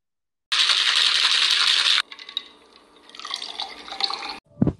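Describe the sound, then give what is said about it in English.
A drink pours steadily into a cup for a second or two, then gives way to light clinks and trickling drips, with a soft thud at the end. No one speaks. “I'm gonna try to get y'all red cups. Get ready to pour up with us.”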